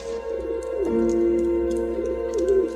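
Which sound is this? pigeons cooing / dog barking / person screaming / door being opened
pigeons cooing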